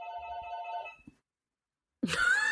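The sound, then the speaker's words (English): A telephone rings once, a single steady electronic trill lasting about a second, then cuts off into silence before a louder, different sound starts abruptly. “The phone is ringing.”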